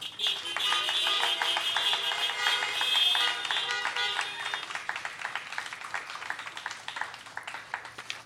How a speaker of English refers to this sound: So the only thing we could do is to say a big thank you, and I'd like you to do a prolonged clapping and honking of the cars